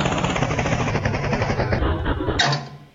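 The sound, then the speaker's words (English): A helicopter, Ballycopter, lands right next to a sheep: a loud, steady helicopter roar with a throbbing low rotor beat and a broad whooshing hiss, which briefly flares and then starts winding down as it settles. “High above him, the sheep hears Ballycopter, who is on his way to visit Squeaky. But then Ballycopter lands right next to him.”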